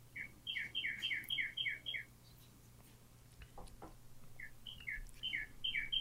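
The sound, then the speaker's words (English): A big red cardinal sings two runs of quick, clear whistled chirps, the first burst fast and steady, the second after a short pause, over a low background hum with no talking. “I love that you have these birds in the background just queued up for us. Well, I'm looking at a big red cardinal.”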